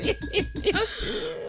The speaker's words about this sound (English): Hit the bell.